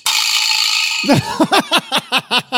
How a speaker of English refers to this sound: Hold on. Did you really get a vibra slap for Synology? I sure did. Oh my god! Doesn't have the elegance of the bell.